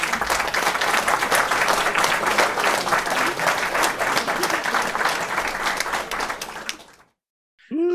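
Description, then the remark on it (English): A crowd's steady, loud applause of dense, overlapping claps for about seven seconds, inserted to mark the Twisted Cape becoming the inaugural Spaghetti Bowl champion. It stops abruptly into silence, and a voice begins just at the end. “Yes, well, I will insert applause here.”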